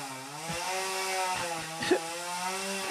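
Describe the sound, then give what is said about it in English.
A chainsaw engine drones steadily, its buzzing harmonics wavering as it bites into wood, with brief rasping bursts of cutting and no voices. “I knew a chainsaw was coming out today.”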